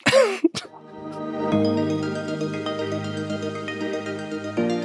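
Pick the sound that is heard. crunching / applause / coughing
coughing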